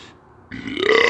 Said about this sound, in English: Excuse me on that. You know, a couple of burps and shit here, there, you know, man shit.